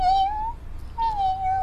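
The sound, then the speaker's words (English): Two thin, high-pitched meows from a tiny kitten, each drawn out and slightly wavering, with a short pause between them. They sound clear, with no talking. “But as they got closer to it, they saw that it was a tiny kitten.”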